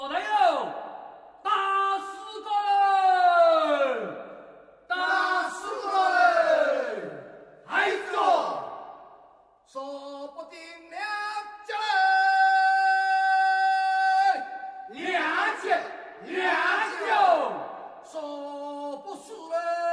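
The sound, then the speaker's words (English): Fishermen's Haozi work song: a group of voices chants loud, rhythmic calls with sliding pitches, followed by a long sustained note held by several singers before the swooping calls resume. “Let's hear a work song that brings this scene back to life.”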